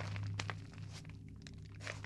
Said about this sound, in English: Suddenly, I hear footsteps right next to my side of the tent. They are slow, but steady.